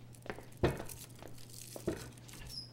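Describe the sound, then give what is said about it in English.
A snack wrapper crinkles in a few sharp, crackly bursts with short pauses between them, over a steady low hum. No one speaks. “No, thanks, but I might take some of your snacks here.”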